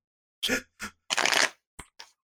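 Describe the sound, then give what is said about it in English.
Playing cards being shuffled: a few short, crisp papery bursts, with one longer fluttering riffle in the middle, then two quick snaps. Moderately loud, with no talking. “You're the one shuffling.”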